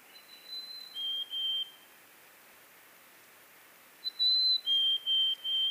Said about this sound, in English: Mountain chickadee, own sake. I've never heard anything happier or merrier than a chickadee-dee-dee. When these snazzy little gray birds with the sharp black stripe through their eyes show up and tell all the world, chickadee-dee-dee, we are here,